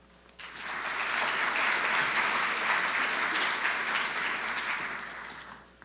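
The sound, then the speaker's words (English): Steady audience applause rises quickly and holds as a dense, even wash of clapping for several seconds, then tapers slightly toward the end. No one speaks over it. “and in that order, we'll hear from all five speakers, and at the end, we'll have time for applause.”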